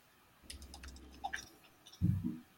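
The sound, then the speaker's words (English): A quick scatter of light clicks and keyboard taps, fairly quiet, over a low hum, ending with a heavier thump, as someone scrolls to the top of an online resource library, clicks in the search bar and types the words "impossible dream". No one speaks. “Yes, and we're scrolling to the top and clicking in the search bar, and okay, we're going to put in the words impossible dream.”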